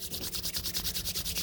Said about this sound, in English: It's supposed to be shuffling the cards. Does it sound like it?